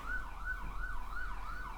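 An ambulance siren wails in quick, repeating rising-and-falling sweeps as it passes by, over a low road rumble, fairly loud and steady throughout, with no one speaking.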